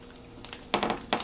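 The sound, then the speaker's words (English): Crisp crunching as bubbly, crispy pizza crust is bitten and chewed, a few sharp bursts in quick succession after a quiet moment, with no talking. “All right, 3, 2, 1, bubbly pizza crust, here we go. Real crispy.”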